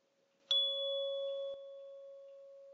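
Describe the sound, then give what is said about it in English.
A single struck tuning fork rings out with a bright metallic attack, then settles into a steady, pure sustained tone that slowly fades, clear with no voices. “So imagine hearing the pure tone resonating from a tuning fork and matching it with your voice.”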